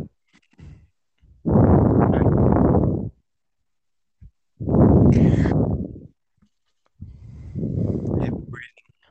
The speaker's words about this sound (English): Man's breathing really hard. Who, me? Yeah, it's a tough topic then.